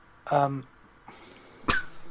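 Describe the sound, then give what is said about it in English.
A dog snoring: a raspy, voiced snort, then a long breathy exhale and a sudden sharp snuffle at the end. Moderately loud, with no talking. “Someone's snoring. Yeah, it's my dog.”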